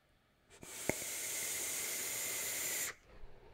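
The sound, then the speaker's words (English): A Kennedy 28 atomizer on a Vaping Bogan Odin mod with dual 21700 batteries fires at 92 watts on a 0.11 coil during an inhale of Turkish harvest liquid: a steady sizzling hiss holding for about two seconds, with a small click near its start, then cutting off abruptly. No one speaks. “So this is 92 watts, 0.11.”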